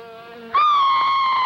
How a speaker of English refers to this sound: The fly is on its way. Watch out for it.